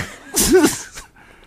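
A single loud, harsh cough bursts out, rough and partly voiced, followed by a brief softer exhale before it goes quiet.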